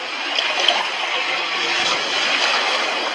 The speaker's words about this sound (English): What is that noise? Oh, no. Look what you did. The water's going down. It's going down.